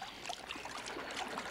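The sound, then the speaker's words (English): Someone wades barefoot through shallow creek water, feet churning up a steady run of splashes and gurgles with bright, irregular droplet sounds on top. Continuous and moderately loud, with no talking. “Splashing in this water makes me thirsty.”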